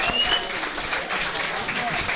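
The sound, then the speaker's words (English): A steady burst of applause from many hands at a West Ham awards event, given for a man who helped some bystanders, a dense, even patter that stays loud for a couple of seconds, with a few faint whistles rising through the clapping. “quick round of applause for the man who helped those people around here.”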